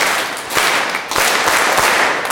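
An audience at a church Mass applauds the eighth graders steadily, a dense wash of many hands clapping at once with a few sharper individual claps standing out, fairly loud and with no voices heard.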